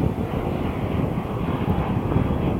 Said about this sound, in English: And that plane, that just really flying high too.